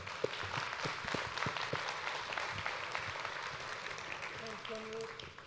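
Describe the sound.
A crowd applauds steadily, a dense wash of clapping that holds at an even level for several seconds, with a few scattered voices and faint tonal sounds mixed in near the end.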